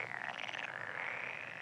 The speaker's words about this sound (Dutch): En de kikkers en de salamanders.